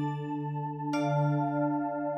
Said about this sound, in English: There are chime noises like this.